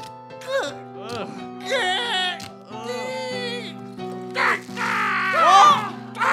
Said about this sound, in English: The birds are somehow... They're zombie birds.